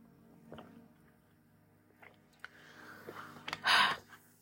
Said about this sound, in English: So I'm taking a sip of water for a second.